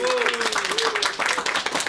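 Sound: small round of applause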